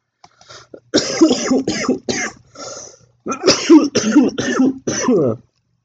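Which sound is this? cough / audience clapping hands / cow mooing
cough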